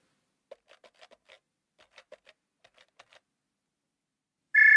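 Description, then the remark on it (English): A phone number is tapped in: a dozen or so soft, quick key clicks in uneven bursts, then a pause before a loud, steady electronic tone abruptly starts at the end. No one speaks. “All right, let me dial the Fizzone.”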